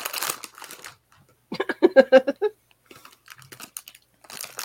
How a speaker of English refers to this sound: As Dee crunches the bag right in front of her mic.